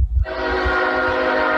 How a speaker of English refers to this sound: Here comes the train. Here comes the train. So welcome to my world, everybody. The train comes through.